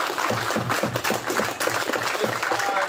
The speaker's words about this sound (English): So thank you guys again. Again, big round of applause for everybody.